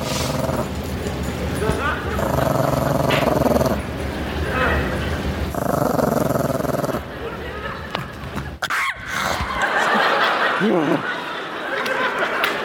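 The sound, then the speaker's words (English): A dog growls in rough, rumbling bursts, broken by snarls and short yips, with the sound cutting abruptly between segments and a quieter stretch near the end. “this is my sister's dog, this dog hates everyone and everything about the world.”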